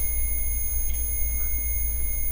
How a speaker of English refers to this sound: Should I start Morse coding this? Sometimes it's Morse code, sometimes it's not. I've seen that happen like once or twice. Yes. See, that's not Morse code. It's just Now it's just beeping like crazy.